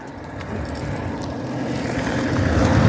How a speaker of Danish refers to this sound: Nu er der ikke mange biler her. Ja, der er da god trafik her. Ja, sikkert altså, alle de turister. Det er bare, alle indbygger lige kørt forbi.